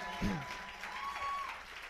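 A church audience claps steadily for the whole two seconds for a minister asked to stand up, a dense patter of many hands with a brief voice or cheer rising above the applause.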